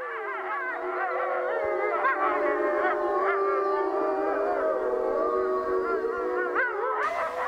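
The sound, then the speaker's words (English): A chorus of wolves at Mission Wolf in Colorado howling together, several long overlapping wavering howls rising and falling at once, sustained, with no talking. “Before I visited Mission Wolf, I thought I might find the howling of wolves eerie and even frightening.”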